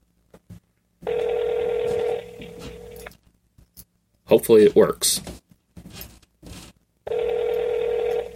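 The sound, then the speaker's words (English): A phone's ringback tone plays as a man calls someone, two steady, buzzing rings about two seconds long, separated by a pause. A man speaks briefly between them. “Let's give her a call here.”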